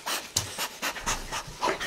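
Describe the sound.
A voice mimics a dog character, Blanco, going around checking and sniffing for smells, with quick rhythmic breathy pants and short sniffs repeating steadily for a couple of seconds, hissy and moderately loud, with no words spoken.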